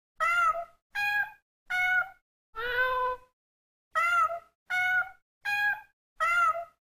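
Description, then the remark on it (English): A premium Audible cat clock sounds: a cat meows eight times in a steady, evenly spaced series, the fourth meow longer and lower than the rest, clear, with no talking. “My first three premium clocks are, cat clock.”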